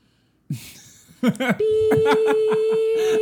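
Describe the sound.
A steady, loud censor beep tone cuts in and holds for nearly two seconds, with voices talking underneath it and briefly before it starts.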